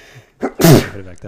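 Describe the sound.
A single loud, explosive sneeze bursts out, with brief speech from another voice just before it and a trailing voice afterward.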